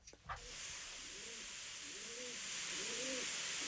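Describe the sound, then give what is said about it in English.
A person imitates a pigeon, making three soft, rising-and-falling coos at a steady pace over a constant hiss, after a brief thump at the start. “That's not a pigeon. That's a human.”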